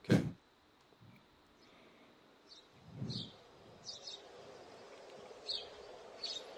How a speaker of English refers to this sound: That's a fucking bird. That's correct.